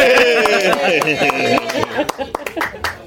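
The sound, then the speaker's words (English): Construction hammering right behind a studio where soundproofing work is being done: a quick, irregular series of sharp, loud knocks, about a dozen in three seconds, cutting through people talking over them. “This is probably the first podcast that you've been to where they're doing construction.”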